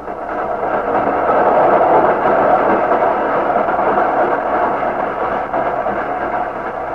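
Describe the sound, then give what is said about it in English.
A fast train speeding toward Chicago roars steadily along the rails, a loud, continuous rumble with a dense rushing noise that holds for the whole stretch with no voices. “Mario Descari, who at that same moment was clinging to the brake rods of a train speeding toward Chicago, shivering with the cold, his mind filled with chaotic thoughts.”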